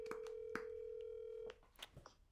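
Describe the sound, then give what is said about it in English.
A steady telephone dial tone hums for about a second and a half, broken by a few sharp keypad beeps as a call is placed to a friend, then cuts off, leaving brief, quieter tones and clicks. “We're recording the Void podcast, so we figured we'd phone a friend and put you on”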